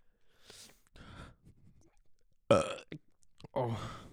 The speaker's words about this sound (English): As soon as you burp, we both knew that shit.